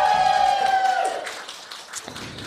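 A brief, sparse round of applause: scattered handclaps at moderate volume, opening under a steady high whistle-like tone that slides down and fades after about a second.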